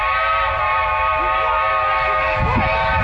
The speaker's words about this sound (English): So train noise, here comes the train.